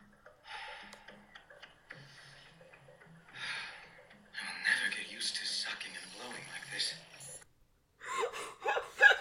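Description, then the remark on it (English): Deep, heavy breathing, a series of long, rasping inhales and exhales with brief pauses between them, growing louder toward the end. “Just in case it didn't get picked up, that was deep, heavy breathing, mm-hmm.”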